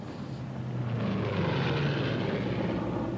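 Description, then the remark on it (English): A propeller fighter plane bearing a swastika banks over a hill with a steady, rough engine drone. Low throbbing tones sit under a broad roar that swells slightly louder and then holds. No voices are heard. “The crowd then banked right in front of me on that hill.”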